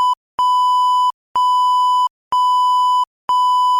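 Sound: censor bleep tone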